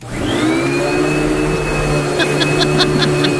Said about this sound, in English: I'm really hoping it's a vacuum cleaner. It's a vacuum cleaner.